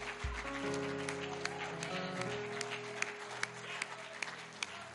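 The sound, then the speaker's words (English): An audience claps their hands to the Lord in a steady, dense wash of applause, with sustained organ chords droning underneath throughout. “I think you ought to clap your hands to the Lord.”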